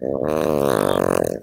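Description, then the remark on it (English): A single loud dog snore, recorded by a microphone placed on the sleeping dog: one long rattling, buzzy breath lasting about a second and a half, with no talking around it. “sorry, just miking up his dog while he snores.”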